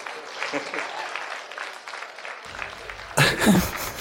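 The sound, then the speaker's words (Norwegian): Thin, scattered clapping from a modest school audience, weak and polite, a soft patter of hands that swells a little louder near the end. “Ja, litt slapp høflig applaus der.”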